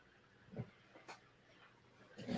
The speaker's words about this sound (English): Sorry. Being distracted by adorable puppy.